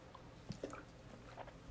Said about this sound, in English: Let me just take a quick sip here.